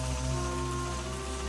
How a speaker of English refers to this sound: And did I mention? The rain is torrential.